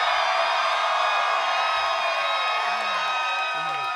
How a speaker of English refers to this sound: And, oh, you guys got to make a lot of noise, make it sound like a huge crowd.